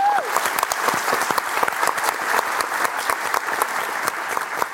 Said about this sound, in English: Round of applause